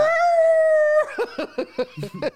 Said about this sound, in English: Hear the fucking cat meowing.